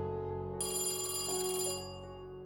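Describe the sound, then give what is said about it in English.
A telephone rings steadily at moderate volume, its bright electronic bell tone sustained with a shimmering, buzzy quality before cutting off abruptly; it is an anonymous phone call to Bugliosi in 1976. No voices are present. “Then in 1976, Bugliosi received an anonymous phone call that continued to strengthen his suspicions.”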